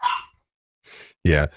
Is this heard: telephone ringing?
no